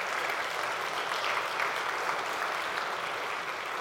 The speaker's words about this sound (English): Can we give these people a round of applause? They deserve it.